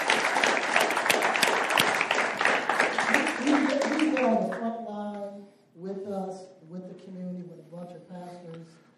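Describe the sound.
An audience breaks into a dense round of applause for their pastor that lasts about four seconds, loud and steady, then fades as a man begins speaking.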